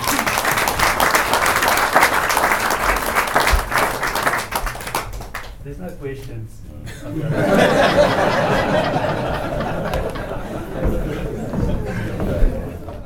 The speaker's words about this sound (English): They are fantastic, so maybe give them a massive applause as well.